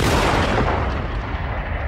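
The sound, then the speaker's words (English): A single loud rifle gunshot fired at a lion during a hunt bursts out, followed by a dense, rumbling boom that lingers and slowly dulls over two seconds. No voices are heard. “Take the shot.”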